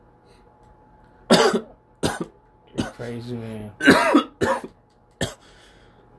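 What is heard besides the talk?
coughing and throat clearing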